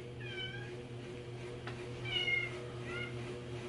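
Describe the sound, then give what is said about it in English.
A cat meows three times in a row, drawn-out, whiny calls over a steady low electrical hum. “My cat liked that one.”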